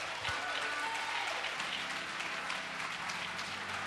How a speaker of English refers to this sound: Clap your hands if you will.